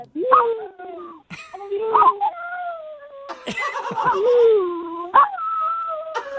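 A dog named Shuka vocalizes in several warbling howl-like phrases whose rising and falling pitch mimics the rhythm of someone saying "I love you," repeated with short pauses between.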